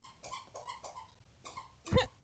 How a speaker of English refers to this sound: Sorry. So my dog decided to join in and has a squeaker toy.